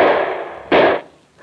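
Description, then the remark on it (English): Loud, harsh bursts of gunfire from men shooting at a stalled car, with no one speaking: a sustained crackling blast, then a sharp second burst that dies away, followed by a fainter third shot. “Duck, they're shooting.”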